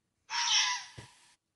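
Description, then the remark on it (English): A single harsh, raspy scream from a red fox sheltering from the rain in a closed garage, lasting about a second, loud and hoarse with a strained, shrieking quality, tailing off with a brief low thump near the end. No one speaks. “We got a King George Fox.”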